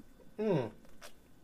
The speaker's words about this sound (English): Okay, even though I'm on vacation, I am gonna take a sip of beer real quick.